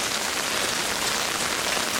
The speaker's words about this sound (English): Check this out, dudes. Look at that water flowing. It's a freaking river running right through here.